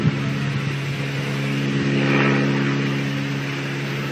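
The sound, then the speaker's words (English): A steady airplane engine drone from a plane that is not moving, recorded outside on a cell phone, with strong low tonal hum and broad roar, holding fairly constant with a slight swell midway, loud with no talking. “But it sounds like it's moving. You can hear the engine.”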